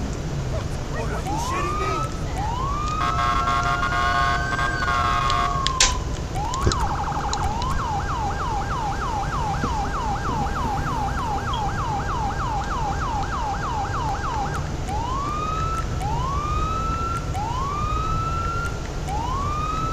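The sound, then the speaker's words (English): A Los Santos police car siren wails in rising sweeps, switches to a rapid yelp for several seconds, then returns to slow wails, steady and fairly loud over a constant rumble of road traffic blocking its way. “Cop car's coming from that side.”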